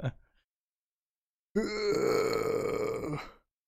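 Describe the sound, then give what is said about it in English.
A single drawn-out, strained grunt from a tired person stretching, fairly loud, lasting under two seconds after a brief faint noise and a pause of silence. “The stretch.”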